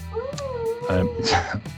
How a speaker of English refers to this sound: Sorry, the dog's going off again.